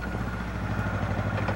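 A big motorcycle engine idles with a steady, throaty low rumble and a fast, even pulsing beat, loud and unbroken, with no voices.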